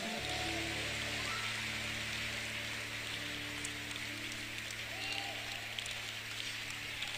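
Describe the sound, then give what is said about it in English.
A crowd claps hands in a dense, steady wash of applause that continues throughout, with a low sustained hum running underneath. An audience gives a hand clap to Jesus at a gathering on a hilltop in Achimata Forest. “Give a hand clap to Jesus.”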